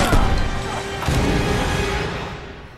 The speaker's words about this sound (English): he hit his head on the door and died. I don't know if he's actually dead.